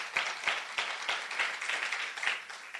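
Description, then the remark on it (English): An audience applauds together, giving the Lord a clap offering, many hands clapping in a dense, steady wash with a few sharper claps standing out in a loose rhythm, moderately loud and sustained throughout. “Come on, let's give the Lord a good clap offering.”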